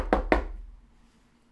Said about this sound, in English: Yes. And knock on wood if you're with me.